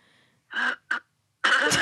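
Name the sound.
coughing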